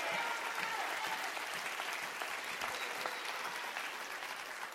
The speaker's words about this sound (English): Somebody clap your hands and rejoice in that.